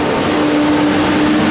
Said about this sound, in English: I should stop for that. Yeah, right? we'll wait for the garbage truck to go by.